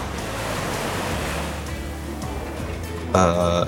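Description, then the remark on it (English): Ocean waves crash and roar in a steady, full wash of surf for the whole stretch, with a brief tonal, horn-like sound rising over it near the end. “Don't worry, we've managed to contain the ocean in the janitor closet.”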